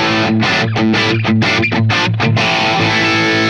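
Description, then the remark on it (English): A dirty, distorted electric guitar rhythm tone, otherwise basically dry, plays a chugging rhythm of short, choppy chords, then rings out on a sustained crunchy chord. Loud, with no voices. “And then I've got that dirty rhythm tone, switches to basically dry.”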